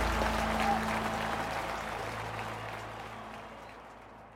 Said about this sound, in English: The crowd cheers as Ulysses walks straight to his wife, Julia.